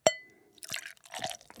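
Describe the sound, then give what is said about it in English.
A pilsner brewed with jasmine flowers, called I Can Show You the World, being poured into a glass: a bright glassy clink, then a splashing, fizzy pour in uneven bursts, ending with another sharp clink. Clear, with no talking. “tell us what you brought as Patrick pours this out”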